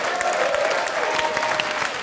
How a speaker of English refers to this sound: And thank you to all of the other presenters and performers and everyone this year. Let's do one big round of applause for everyone.